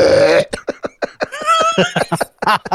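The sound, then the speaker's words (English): A single loud, low, rumbling burp from a woman singing a hymn erupts at the start, followed by a run of short, choppy vocal bursts and snickering sounds. “It was just a burp. It was just a big old burp right in the power part.”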